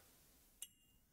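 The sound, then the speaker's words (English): A single bright clink of beers being tapped together in a toast, followed by a short high ringing tone that fades out, with no talking over it. “So, like the thing that cheers, man. Cheers.”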